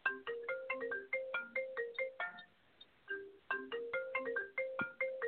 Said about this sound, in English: Oh, we got a phone going off there. I've got so much equipment here, I can't figure out which one it is.